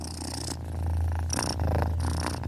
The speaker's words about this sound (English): Magpie lets the sound of Scarlet's purring calm her down before picking up the notebook and opening it to the sketch of the boy with the car.